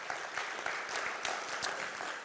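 A church audience breaks into steady applause for the church's 20-year anniversary, many hands clapping together in a dense, even wash of sound that holds at a moderate level throughout, with a few sharper claps standing out.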